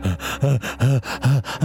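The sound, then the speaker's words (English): A person imitates a dog's panting with five quick, evenly spaced voiced huffs, fairly loud, each breath rising and falling in pitch. “Until out of nowhere, I heard panting.”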